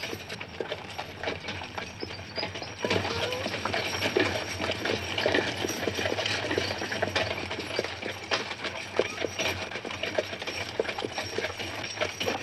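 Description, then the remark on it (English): Horse hooves clip-clop at a steady walking pace, a continuous run of sharp knocks that grows a little louder and busier after the first few seconds, with no voices. “Scotty, walk now. Why horses? Because they're slow.”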